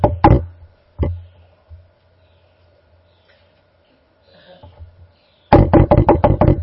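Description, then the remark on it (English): A couple of sharp knocks on a house door by arriving visitors, a pause with faint shuffling, then a rapid burst of about seven loud, evenly spaced knocks, with no talking. “They knock on the door.”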